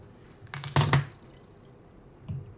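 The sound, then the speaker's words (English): A beer bottle cap is pried off with a quick metallic pop and clink, followed by a short glassy rattle as the beer is poured into a glass, then near quiet with a faint soft thump at the end. “Well, I'm going to open my celebration while you do the same. We'll pour this bad boy.”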